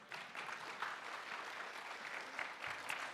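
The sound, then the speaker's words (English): A church audience claps steadily for a few seconds, a dense, even wash of many hands with no voices over it. “So thank you, and now you can clap again.”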